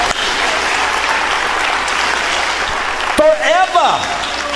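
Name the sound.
audience clapping hands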